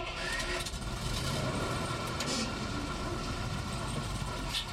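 A bus engine idles with a steady, low mechanical rumble that holds an even level throughout, with faint clatter and hiss over the continuous drone and no voices.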